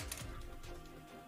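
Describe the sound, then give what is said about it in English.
A few quick, faint clicks and clatters of a die rolled across a hard tabletop during a tabletop role-playing game, with no voices over them. “All right, well, I'll just roll a different dice.”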